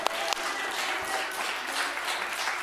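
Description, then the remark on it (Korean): A crowd at a church sermon claps together in a dense, steady burst of applause that keeps going for a few seconds, fairly loud, with no voices rising above it. “박수 치는 만큼 그 갑절로 주실 거예요.”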